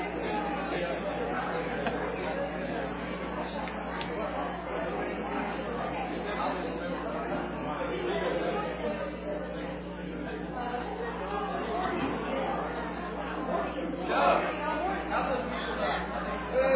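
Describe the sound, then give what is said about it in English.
A crowd stands up, shakes hands and introduces themselves, many overlapping voices forming a steady, moderately loud babble with no single voice standing out, lasting throughout. “Well, if you are comfortable or if you're not comfortable, stand up, shake hands with three or four people.”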